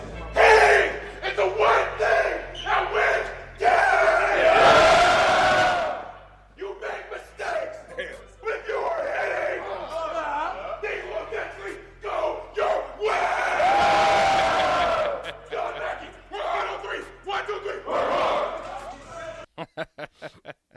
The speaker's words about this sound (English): was that too much yelling for you, or was you cool with that? Just too much talk. I don't like talkers like that in the weight room